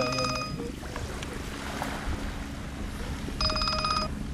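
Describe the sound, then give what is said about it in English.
A cell phone ringtone sounds twice in short electronic bursts, one at the start and another near the end, on an uninhabited island, over a steady rumble of wind, water and a boat engine. “And then there's this reminder of civilization.”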